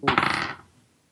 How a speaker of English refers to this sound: Hey! I am rolling really well. That's some hot dice. We got to go to Vegas.